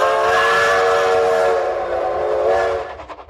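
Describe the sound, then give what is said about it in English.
A steam train whistle on the Denver Rio Grande Railroad, leaving Salt Lake, blows a long, loud, steady chord for nearly three seconds, then cuts off, leaving the rhythmic clatter of the rolling train fading out. “I finally left Salt Lake on the Denver Rio Grande Railroad, and I rode it to Kansas City, Missouri”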